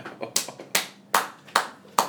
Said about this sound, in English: Sort of your clap there, but that'll do.